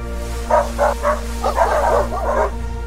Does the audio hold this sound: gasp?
no